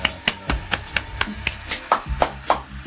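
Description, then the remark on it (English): Hands clap in a quick, steady rhythm, around a dozen sharp claps over a few seconds, with several landing louder and brighter than the rest. No one speaks. “Hey, let's clap it up.”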